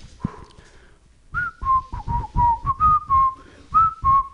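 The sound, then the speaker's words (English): A person whistles a quick, bouncy run of about eight short, mid-pitched notes, wavering and breathy, imitating a fart. A faint, shorter whistle comes just before the run. “Except when I farted, it sounds like”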